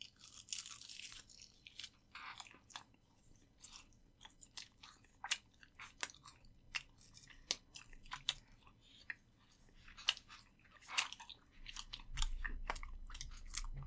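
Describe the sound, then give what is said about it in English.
Someone chews a dry spicy beef patty, with repeated crisp, crunchy bites and wet mouth sounds in an irregular rhythm, fairly quiet, no talking, and a low rumble near the end. “The first bite usually is too.”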